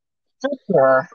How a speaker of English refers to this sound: Oh, man. All the coughs today, man.